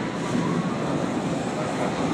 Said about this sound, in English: So I'm on the train on the way to the podcast, which will be happening in Kaechung today.